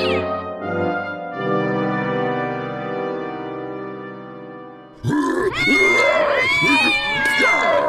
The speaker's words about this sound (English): What's that noise? Cat! Have you ever seen so many cats? Alley cats, domestic cats. Where'd they all come from? And they're being led by Mr. Fluff Nugget!